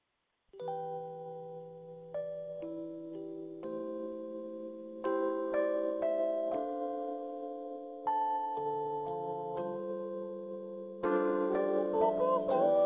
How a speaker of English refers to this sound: 40 minutes past the hour, 10 o'clock, here's my all-time favorite Christmas song.